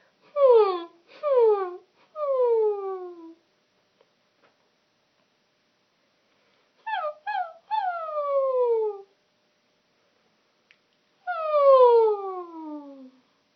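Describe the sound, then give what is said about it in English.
A human voice imitates a puppy whine three times as a vocal exercise: each round has two short high yips followed by a long, falling whimper, with quiet pauses between the rounds. “And the last one that I want to do with you is like a puppy whine.”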